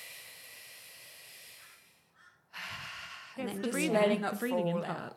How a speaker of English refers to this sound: So what I always explain is to really deep breathe into the belly, into the lungs, filling up the diaphragm. So it can be a really slow...